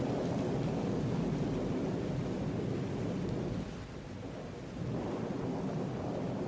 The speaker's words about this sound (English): I was sitting in my office on Thurman Street on a Wednesday afternoon last month, gazing out at the water running down my window. The rains had come with a vengeance to Celestial City, and they did my current mood no favors, believe me.